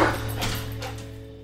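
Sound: dog barking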